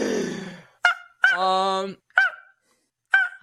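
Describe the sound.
A person imitates a cheetah's call, fairly loud: a breathy rush, then short squeaky chirps around one drawn-out, strained honking cry, each separated by brief silences.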